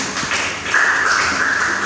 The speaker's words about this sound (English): Please have your seats. Clap for them as they come back. Clap for them.